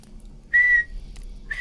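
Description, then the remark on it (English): A steady, high-pitched electronic whistle from a spirit box radio sounds twice: a loud tone held for about a quarter second, then a second one starting near the end, over a low background hum. “And there was whistles all throughout the night. The spirit box was whistling at us.”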